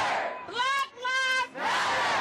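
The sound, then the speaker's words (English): A crowd of hundreds of Central High School students, walking out of class and marching through St. Paul in protest of the death of Amir Locke, chants "Protect young black lives" in unison: two loud, drawn-out shouted phrases rising over a steady roar of many voices that swells again as the chant ends. “Those are the words that a crowd of hundreds carried through St. Paul.”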